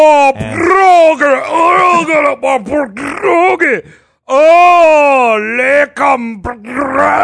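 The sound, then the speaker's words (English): A voice imitates a mother's Scottish-accented, gurgly, anguished moaning in two long, loud stretches split by a brief pause, the pitch wavering and sliding up and down with throaty, grunting breaks. “After a week, Andy was feeling a little bit better and noticed the sounds of Scottish-accented gurgly anguish had stopped coming from his mother's room.”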